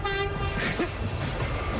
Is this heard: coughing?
no